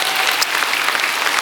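An audience at a service applauds steadily, a dense wash of many hands clapping at once with no pauses, loud and sustained from start to finish with no voices standing out.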